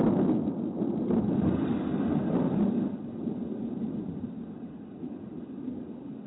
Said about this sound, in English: I looked out the window, and the sky grew darker and darker. The thunder seemed to make the earth shake.